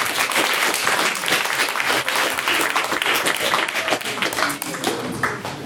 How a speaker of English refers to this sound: Round of applause.